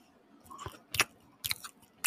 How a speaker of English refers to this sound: Go ahead. Make one chewing sound for Eddie. Just for old time's sake.